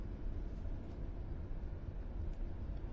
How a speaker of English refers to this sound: And now there was a car with a really loud engine.